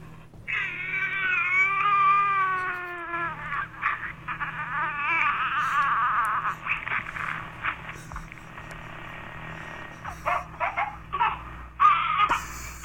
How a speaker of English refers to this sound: Baby. It's a mother soothing her baby.